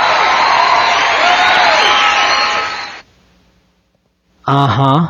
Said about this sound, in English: No, I had nothing to do with that wild cheering.